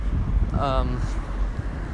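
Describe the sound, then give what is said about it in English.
A steady low rumble of car traffic fills the background throughout, broad and continuous, with a brief voice sounding faintly over it partway through. “I hope you can still hear me over the cars.”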